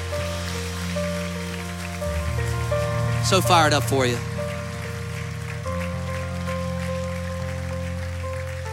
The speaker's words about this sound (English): Come on, keep clapping, keep clapping, keep clapping. Come on, they're still coming, just keep coming, keep coming. Come on, keep clapping, keep clapping. Let's celebrate with them, celebrate.